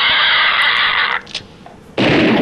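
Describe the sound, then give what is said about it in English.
Two loud gun blasts of a salute, each a harsh, sustained crackling roar rather than a crisp crack, with a brief lull between them and no talking. “Got a two-gun pig salute.”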